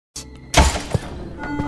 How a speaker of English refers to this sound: Door open.